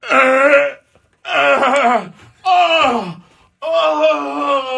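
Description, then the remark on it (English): A voice imitates groaning in pain as if getting out of a car at a gas stop: four loud, drawn-out moans, each about a second long, with wavering, falling pitch and short pauses between them. “writhing and screaming in pain.”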